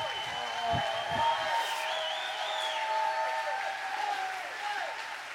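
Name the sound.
audience clapping and shouting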